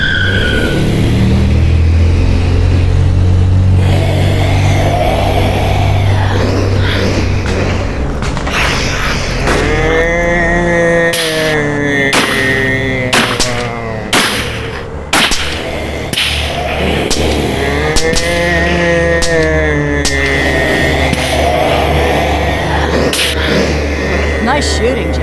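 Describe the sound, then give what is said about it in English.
A heavy truck engine rumbles and revs, then gives way to sharp cracking bursts and rising, squealing whines as it keeps moving toward a gate, loud and busy throughout. “We're sending the truck to you.”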